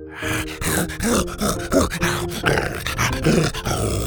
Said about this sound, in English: growled with excitement and tucked back behind the shrub.